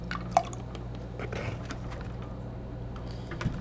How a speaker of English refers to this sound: I'll just pour some in with the eggs. Hopefully it's milk, not juice. Yeah, it's milk. You want some blueberry... watermelon juice pancakes. You can really hear the drip, the pouring too.